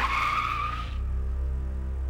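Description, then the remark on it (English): A car brakes hard and swerves to the side of the road, its tires squealing in a loud, high skid for nearly a second, then cutting off abruptly, leaving the low rumble of the engine idling. No one speaks. “I braked and quickly swerved the car to the side of the road.”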